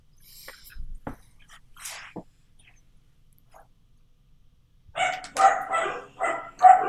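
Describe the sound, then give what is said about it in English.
Dogs break into a loud run of rapid, overlapping barks near the end, four or five sharp barks in quick succession, after a stretch of faint, scattered noises. “Real dogs. Real dogs.”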